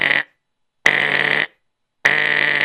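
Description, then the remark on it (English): A voice imitates an alarm clock going off: three loud, harsh buzzing blasts, each held for about half a second with short pauses between, with nothing else heard. “And sure enough, he went to sleep, and the next morning came, and his alarm rang.”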